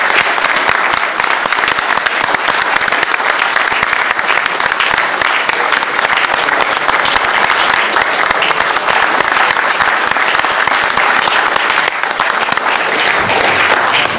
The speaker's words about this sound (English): But I think all our councillors should deserve a very rich round of applause for the effort, the dedication and the time that they have put into their term of office. Thank you all very much indeed.